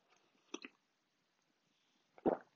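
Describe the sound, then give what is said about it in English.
Someone sips coffee: a pair of soft, wet mouth clicks, a short pause, then a louder slurping gulp, with near-silence around them and no talking. “So now I'm going to take a quick coffee sip and I'm going to tell you what that means for the rest of the season.”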